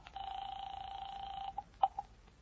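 A telephone line sounds on its own as a man calls a woman's home in Louisburg Square: a steady electronic tone holds for over a second, then a few short, quick dialing beeps follow, fairly faint.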